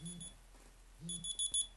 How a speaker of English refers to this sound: Oops. Like taking my medication on time. Or turning my alarm off when I'm trying to do a fucking podcast.